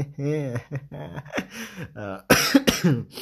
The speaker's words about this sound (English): Sorry about the coughing again.